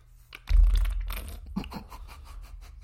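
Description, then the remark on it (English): A wet slurping sound of someone sipping a drink while trying to make a slurping sound, breaking into brief bubbling and small pops with a low rumble underneath, lasting a couple of seconds with no talking. “I was trying to make a slurping sound, but it just kind of bubbled a little bit and popped me.”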